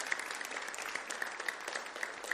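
An audience claps their hands together in praise, in steady, dense applause, many overlapping claps forming a continuous, fairly loud patter with no voices rising above it.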